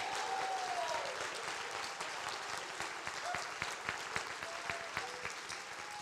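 A church audience claps hands steadily in praise of the Lord, a dense, continuous wash of applause, with a few whoops and shouted voices rising above the clapping throughout.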